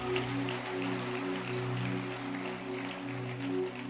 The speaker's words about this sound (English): Go and clap your hands for yourself.